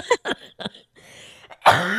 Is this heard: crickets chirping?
no